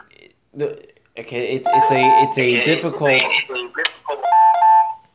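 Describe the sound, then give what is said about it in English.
A mobile phone ringtone for an incoming call chimes in bright, repeating electronic tones, playing in two bursts while a man keeps talking over it. “My phone is playing games. You still there, David? That was mine. Oh, okay. Somebody was calling me.”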